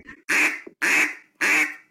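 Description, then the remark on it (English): Three loud, drawn-out quacks blown on a duck call, its reeds rattling, each held for about half a second with a raspy, nasal tone and a trailing fade, spaced evenly with no talking. “Yeah, it stretched that quack out.”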